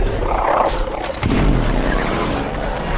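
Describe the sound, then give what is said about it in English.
A loud, deep creature roar fills the whole stretch, a rumbling bellow that swells and shifts in pitch over about three seconds, a movie dinosaur roar from the Jurassic World film franchise with heavy low-end growl. “The franchise has been going for nearly 30 years, with tiny human actors taking on roaring giants.”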